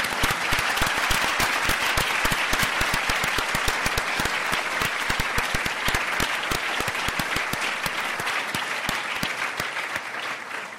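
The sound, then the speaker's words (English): Sustained audience applause for Christine Lagarde as she is introduced, a dense crowd of clapping hands at steady loudness for about ten seconds, tapering slightly at the end. No one speaks over it. “Step on my applause.”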